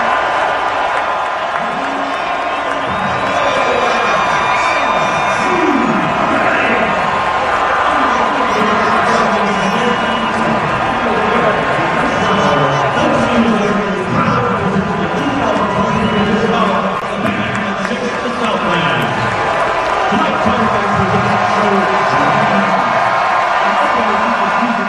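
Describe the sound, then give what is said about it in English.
A huge stadium crowd roars nonstop as a man walks to the middle of the field, a dense wall of many voices, mostly cheers with some booing mixed into the din, loud and steady throughout. “That sounds like cheers. Yeah, I would say it was probably 90% cheer, 10% boo, if I had to put a number to it.”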